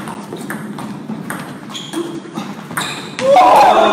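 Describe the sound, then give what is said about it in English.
A ping pong rally between professional ping pong players: crisp, bright ball clicks trade back and forth in a steady, quick rhythm over a murmur of voices, then a louder surge of crowd noise bursts in at the end. “These are professional ping pong players.”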